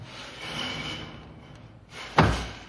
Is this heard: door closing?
yes